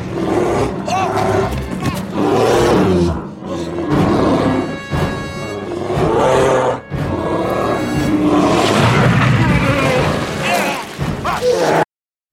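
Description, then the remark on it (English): A bear charging out of the woods in a film scene roars loudly in long, ragged bursts, deep and growling with rough harmonic edges, broken by a few brief pauses before cutting off abruptly. “They're having a conversation, and a bear charges out of the woods.”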